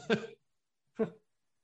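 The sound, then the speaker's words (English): Two short, raspy coughs, a longer one followed by a briefer one after a pause of about half a second, with silence otherwise and no talking. “You start to cough.”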